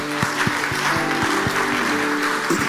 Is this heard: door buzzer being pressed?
no